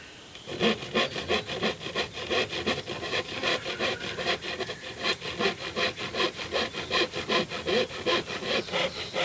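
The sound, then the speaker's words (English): A handsaw cuts steadily through a piece of plywood, trimming it to size and shape for track maintenance, with quick, regular back-and-forth rasping strokes, fairly loud, with no talking. “So I've got one more section to do, just a little bit of sawing to get the piece of ply into the right size and shape.”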